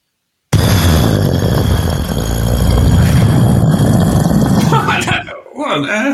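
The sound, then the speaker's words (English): A voice imitates a grenade explosion: after a brief silence, a sudden loud, rough blast rumbles for several seconds, then breaks into short breathy, voiced sounds. “And now your best explosion, grenade explosion.”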